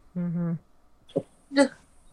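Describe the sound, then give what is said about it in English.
A single sneeze: a short voiced "ah" intake, a pause, then a quick catch and a sharp, breathy burst, with no talking around it. “what was that? I was sneezing.”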